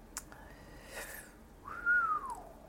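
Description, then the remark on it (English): A person whistles a short phrase of a tune: a faint held note, then a clearer note that swoops up and glides back down, with no talking. “Just a bit of whistling for you.”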